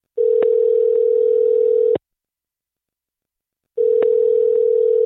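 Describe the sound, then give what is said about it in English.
A phone line rings back twice: a steady electronic tone held for about two seconds, a pause of similar length, then the tone starts again. It is clear, with no voices. “I want to play the phone call that happened and then we can react to it after.”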